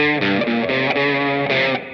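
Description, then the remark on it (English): A loud, buzzy distorted tone plays a run of short sustained notes, stepping in pitch every quarter second or so, with no voices, then thins out near the end. “Had some distortion here.”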